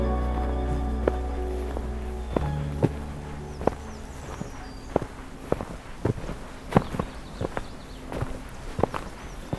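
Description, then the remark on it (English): Steady footsteps crunch along a dirt forest trail at a walking pace, fairly loud, on a hike along the main trail in the north section of Pine Tree Point while retrieving bioacoustic equipment, in calm, warm, sunny weather, with faint birdsong chirping in the background and a low hum at the start. “Continuing my hike along the main trail in the north section of Pine Tree Point”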